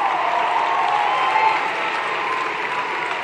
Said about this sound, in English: All right. Let's hear it for these progressive rock stars. Thank you all so much for that inspired conversation. One more round of applause for the Congresswoman Pramila Jayapal, Ilhan Omar, Congressman Mark Pocan.